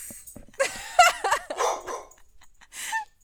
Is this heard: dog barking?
yes